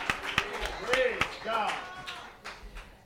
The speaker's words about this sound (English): And the church says, in Jesus' name, Jesus. Amen. Clap your hands to the Lord as you are seated in the house of God.